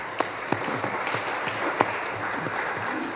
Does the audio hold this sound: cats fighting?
no